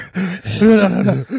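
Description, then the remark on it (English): A voice imitates a man's heavy breathing with a few loud, voiced gasping breaths in quick succession, raspy and strained, with brief pauses between them. “I mean, you hear him, he's breathing.”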